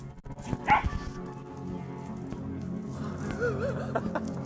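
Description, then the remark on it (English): A passing dog, chasing its owner's laser pointer, gives one sharp bark near the start, followed later by softer, wavering whine-like sounds, all over a steady low background hum. “To give you a visual, there was a dog that passed by, and of course the dog's owner, they were using a laser pointer, and the dog was just crazily running after it, which, you know, is why I called it a cat dog.”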